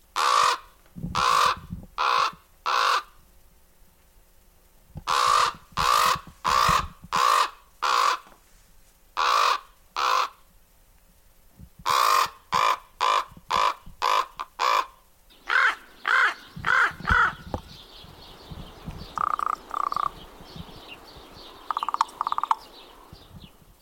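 A common raven's deep, throaty croaks ring out in quick bursts of several harsh calls each, loud, with later calls rougher and blended with a noisy background.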